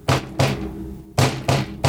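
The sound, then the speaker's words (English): Loud, heavy bangs on a closed door, two quick knocks, a short pause, then three more in a steady rhythm, resonant with a deep thud to each hit. “All right, you walk up to the door. Door's closed. You're going to knock?”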